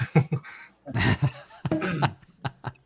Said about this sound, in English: Let me fix the voice. 1 second. Let me clear my throat.